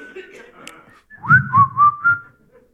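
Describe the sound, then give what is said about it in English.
A person whistles a short run of four sliding notes, fairly loud, rising and dipping in pitch. A faint, indistinct murmur comes before it, then quiet. “What's wrong with me? I can't whistle now?”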